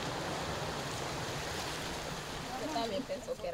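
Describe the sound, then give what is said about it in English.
Steady rushing of flowing river water during one of a series of river crossings on foot through the jungle fills the scene with a dense wash of noise, and faint voices or splashes surface briefly near the end. “We've only been going a matter of hours, and it just seems an endless series of river crossings, and the conditions are just constant water and pretty exhausting.”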